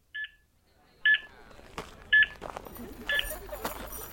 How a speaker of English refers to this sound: At 102 meters, the beeping seemed faster than before. Then, at 135, at its slowest.